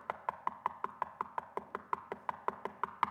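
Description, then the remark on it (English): Rapid, steady knocking on wood, about seventeen evenly spaced raps over three seconds, moderately loud, with no voices. “because he kept knocking, the neighbor got out of bed and gave him the bread.”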